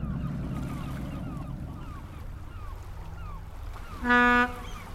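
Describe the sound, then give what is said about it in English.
A boat engine drones steadily with water and wind noise around it as the boat enters a canal lock on a warm, sunny October day, then a short, loud horn blast sounds near the end. “We were lucky to pick this day to take the boat back to the winter dock. I know. Okay, hon, heads up. We're entering the lock.”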